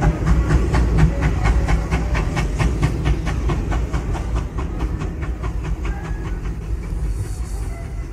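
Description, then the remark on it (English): A train rumbles with a steady, rhythmic clatter of wheels over rail joints, a low heavy drone underneath and some hiss, gradually easing as it comes into a station at the end of the trip. “It is now safe to depart the train.”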